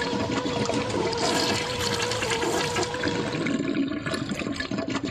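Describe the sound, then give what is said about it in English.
Loud, continuous rushing and sloshing water fills the whole stretch as a person is dunked into a tank of pink or blue water at a gender reveal party, with churning splashes and no one talking. “Is that water going to be pink or blue, guys? Take a guess before you get dunked.”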